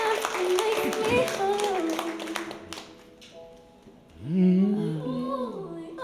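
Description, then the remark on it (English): A burst of audience applause, dense clapping for a few seconds with voices mixed in, fading as a voice carries on talking alone. “Everybody give another round of applause”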